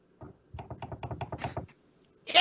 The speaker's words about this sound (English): Okay, I'm just going to roll the dice and hope I don't die. Boop!